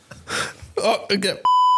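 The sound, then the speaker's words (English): A single steady electronic beep, loud, sounds at the end after a few breathy vocal noises, like quick sharp inhales, made by a button found underneath a seat as it is pressed. “I found this button underneath my seat and every time I press it, it goes...”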